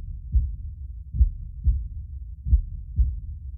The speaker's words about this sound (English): And you feel a reverberation within yourself. It's your heartbeat. And with each beat, vibration spread out, pulsing from the center.